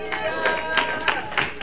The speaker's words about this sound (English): Let's worship God. Come on. Hallelujah. All clap unto the Lord.